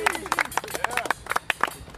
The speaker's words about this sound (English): Chaps, so we've just seen Geraint Thomas go past. Hearty round of applause for him.